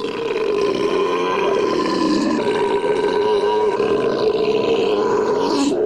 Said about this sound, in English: Ladies and gentlemen, now the moment you've all been waiting for. The belching contest.